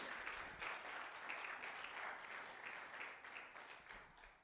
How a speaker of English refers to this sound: Let's give the Lord another hand clap of praise right now.